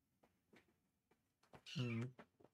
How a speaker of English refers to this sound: Oh. Is that a cat? It's a cat. Nice. That's Luna, right? Yeah, Luna.